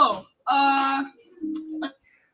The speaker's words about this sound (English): Your mic cut out again. You love to see it.